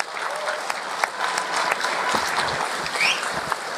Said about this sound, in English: Yeah, a round of applause for Peggy Lipton.